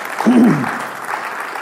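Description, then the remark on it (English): A church audience applauding the news that the church has paid off its debt, a dense steady wash of many hands clapping that holds at an even level, with a short voiced cheer rising briefly near the start. “You can applaud.”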